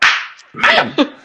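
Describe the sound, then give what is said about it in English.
A loud slap of a teacher's slapping stick cracks out sharply, followed by a couple of quicker smacks in an uneven rhythm, with no voices. “That's when that slapping stick that teachers used to have, that's when that needs to come out.”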